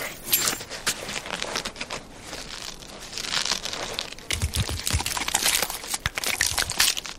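A slow, drawn-out crunching and crackling, wet and gritty, a movie sound effect of a throat being slit, like bone and flesh being torn, with dense textures and a few low thuds; no voices.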